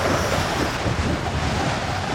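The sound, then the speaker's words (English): Strong wind roars steadily across the microphone at a camp in Vane Springs, Nevada, at 6:30 in the morning, a dense, continuous rumbling buffet with no pauses, loud throughout. “It's very windy, as you can see.”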